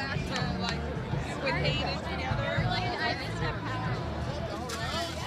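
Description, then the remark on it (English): Steady crowd chatter at the Food and Wine Fest: many overlapping voices blend into a constant, busy hubbub at a fairly even loudness, with no single speaker standing out. “I'm doing a podcast about the Food and Wine Fest, and I'm trying to walk around and get some ideas.”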